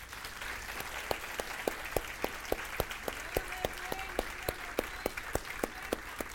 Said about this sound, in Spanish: Gracias a Dios por el aplauso que me dieron. Ahora denle un aplauso a Cristo.